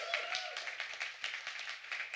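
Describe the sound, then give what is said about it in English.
A church audience claps for Jesus in dense, overlapping bursts, many hands at once producing a steady, bright patter of applause with a faint low hum beneath. “Well, give Jesus a big hand clap if you love the Lord.”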